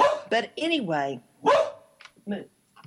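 A dog barks in a handful of short, irregular bursts, some sharp and others drawn out into a whiny, wavering yelp, with brief pauses in between.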